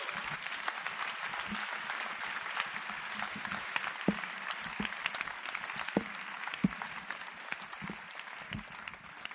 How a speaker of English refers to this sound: Clap for Jesus.